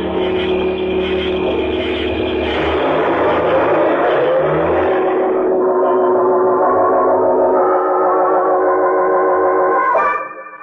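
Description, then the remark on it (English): A station wagon's engine runs loud and steady while driving to a turnoff as the driver pumps the hand choke, its droning hum rising and shifting in pitch as it moves, then cutting off abruptly near the end. “We hit the turnoff in 10 minutes, and I began pumping the hand choke.”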